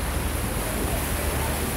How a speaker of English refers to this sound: This home video shows the force of the building floodwaters on the Blanco River.